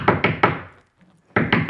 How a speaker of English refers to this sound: And then she goes right to the Garcia's family and she knocks.